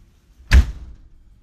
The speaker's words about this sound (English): And then finally, they kicked and kicked and kicked even harder. Like over and over until the door burst open with a loud banging sound.